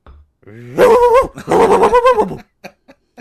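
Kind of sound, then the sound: vocal imitation, voice imitating a puppy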